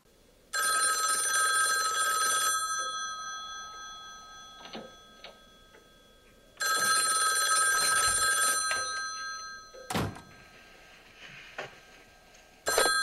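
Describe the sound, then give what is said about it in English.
An old-style telephone bell rings loudly inside a house in two long bursts separated by a pause, a bright metallic jangle, with a few faint clicks and knocks in between. “The officers leave the house to await reinforcements, when the real killer is revealed to be gibbering still inside the house, and the phone rings out once more.”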